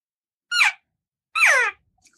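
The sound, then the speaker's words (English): Two short, high-pitched squeaky calls, a quiet cow elk call used to call elk, separated by a pause; each is brief and descending with a harmonic, nasal quality, then silence. “And then we're going to go right back to that real quiet cow call.”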